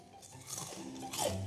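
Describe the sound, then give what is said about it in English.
Crisp crunching and chewing sounds, a couple of bursts of wet, noisy mastication over a second or so, fairly loud and with no talking. “Oh my God, could you chew any louder?”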